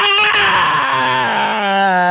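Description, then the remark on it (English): A human voice imitates a monster's scream: a loud, sustained, strained howl lasting about two seconds, its pitch sagging in the middle before lifting again at the end. “At the head is just a skull with unnatural horns that are actually cracked bones growing out of the top of his head, and his eyes burn with an unnatural light, and he screams at you.”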